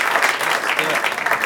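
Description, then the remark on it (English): An audience claps steadily, a dense, continuous burst of applause that stays loud and even throughout, with no single voice standing out, welcoming comedian Adam Cayton-Holland to the stage. “Big round of applause.”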